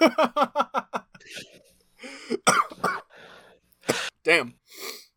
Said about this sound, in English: Making me cough with that one.